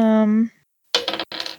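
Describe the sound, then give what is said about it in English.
A brief hummed vocal note fades out. After a pause comes a loud, rapid clatter of dice rolling across a table, with a short break mid-roll; the roll comes up a 2. “I rolled a 2.”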